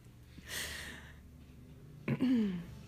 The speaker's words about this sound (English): Sorry, I did not mean to clear my throat. But you might recognize that throat being cleared as pretty much any time in a movie when someone clears their throat, it is me.